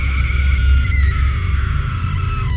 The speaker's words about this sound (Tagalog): Alas 10 na ng gabi nun. Nagulat kaming lahat dahil sa isang malakas na sigaw.